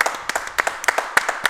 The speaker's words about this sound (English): And one more round of applause, and this is a big one. Round of applause for Sean Clifford, everybody.